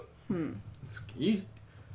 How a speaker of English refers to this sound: Hiccups.